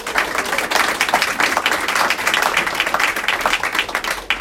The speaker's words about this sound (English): So a big round of applause, please, for Jo.